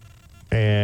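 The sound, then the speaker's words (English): A loud electronic telephone ring cuts in abruptly about halfway through, a steady buzzing harmonic tone that holds to the end after a quiet stretch of low room hum. “The thing that I was going to say before the phone rang was the stuff they give Ohio State credit for 10 years ago.”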